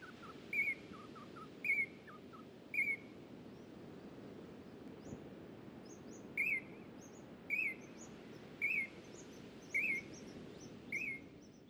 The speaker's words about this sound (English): The first call was a singing honey eater.